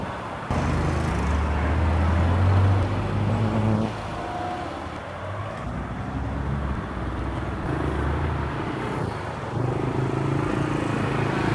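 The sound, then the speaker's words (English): Steady roadside traffic at a bus stop while someone waits for a bus: low engine rumble from vehicles idling and passing, with a constant wash of road noise and no one speaking. “And I'm still waiting for the bus now.”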